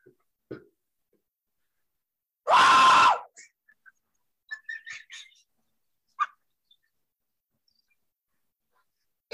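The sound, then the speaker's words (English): One loud scream bursts out for under a second amid near silence, followed by a few faint, scattered squeaky vocal sounds and short clicks. “Why don't we just let out a big scream?”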